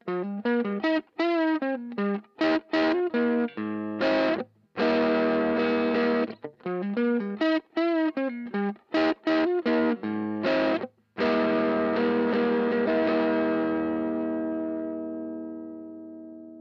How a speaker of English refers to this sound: For example, here's what it sounds like plugging directly into my amp set to the edge of breakup.